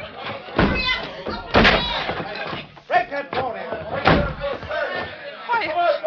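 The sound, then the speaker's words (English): Several heavy, booming blows strike a locked wooden door at irregular intervals, loud, as a man smashes it in, with strained voices and shouts mixed in around the impacts. “Door's locked. No key. Stand back. I'm going to smash it.”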